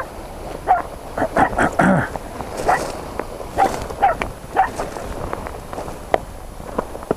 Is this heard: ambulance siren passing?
no